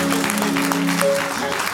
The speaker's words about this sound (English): Do you know how? Jump. Clap your hands. No more stroke.